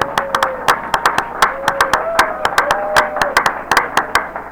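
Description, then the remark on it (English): Audience applause: a steady stream of sharp, overlapping hand claps from a small group, loud, continuing throughout without anyone speaking. “No, I just, everybody give yourselves a round of applause.”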